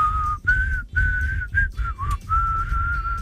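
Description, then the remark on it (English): Someone whistles a short melody in a series of sustained notes, pitch wavering slightly between phrases, clear with a faint low rumble underneath and no talking. “I think he's trying to whistle something, but I.”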